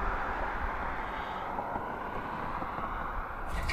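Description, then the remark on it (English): A car drives past while a person waits at their mailbox, its steady whooshing road roar filling the whole moment and rising slightly at the end, with no one speaking. “All right, and I'm gonna open the mailbox when this car goes by.”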